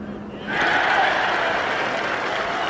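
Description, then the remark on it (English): A golf crowd at the Open erupts into a loud, sustained roar of cheering and applause as Colin Montgomerie's birdie putt drops on the par-4 15th hole. The roar follows a brief hush, swelling suddenly and holding steady to the end. “Listen to the roar of this one drops.”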